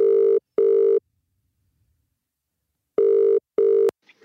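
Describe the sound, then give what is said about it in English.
A telephone ringback tone for an outgoing call: two pairs of steady, mid-pitched electronic rings, each burst under half a second, with a pause between pairs, ending in a brief click. “We thought we'd give you a ring.”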